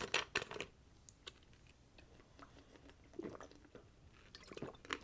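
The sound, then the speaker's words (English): Quiet mouth sounds of someone sipping water, a few wet slurps and gulps scattered through a few seconds of near silence, with no talking. “Let's take a sip of water and see how we go from here.”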